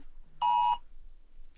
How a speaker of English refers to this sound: That is a tornado warning.